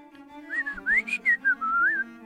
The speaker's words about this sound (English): What's that bird?